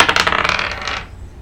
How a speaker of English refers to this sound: How about before we go any further, we roll for initiative. 11.